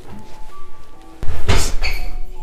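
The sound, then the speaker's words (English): A door bumps against a foot with one sharp thump, then a brief scuffing rustle as it moves. There's no talking, just faint background tones. “Yeah, my foot caught in the door.”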